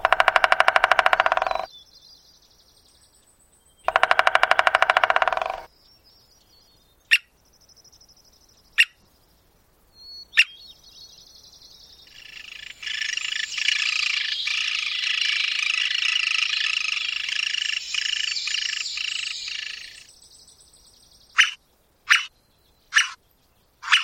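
An American three-toed woodpecker drums in two rapid, loud rolls, followed by scattered single taps, a longer softer drumming stretch, and a few sharp knocks at the end. No voices are heard.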